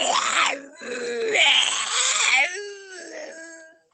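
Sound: creature screaming in pain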